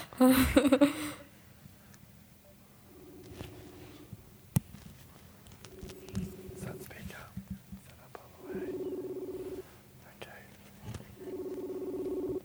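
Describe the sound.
A brief burst of dialing tones, then a phone ringing on speaker with a steady ringback tone repeating every couple of seconds, slightly tinny, over faint background rustling.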